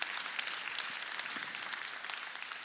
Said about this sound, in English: For the three of you clapping, that's a lot.